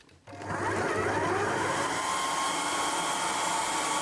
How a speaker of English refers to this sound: They just danced. They just danced to the blender. Yeah, it's the Vitamix dance, I guess.